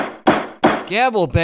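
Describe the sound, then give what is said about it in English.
Two sharp, loud gavel bangs from a sound effect strike in quick succession, each a hard wooden crack with a short ringing decay, followed by a brief burst of voice. “Gavel bang.”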